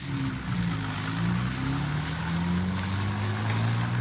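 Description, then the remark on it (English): A car following a cab through heavy traffic toward downtown Los Angeles drives along with a steady engine drone whose pitch slowly climbs as it picks up speed, over continuous road rumble and broad hiss. No one speaks. “Better try to pick it up a little, Frank. Cab's pulling away from us.”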